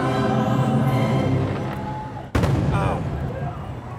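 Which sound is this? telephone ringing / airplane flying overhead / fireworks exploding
fireworks exploding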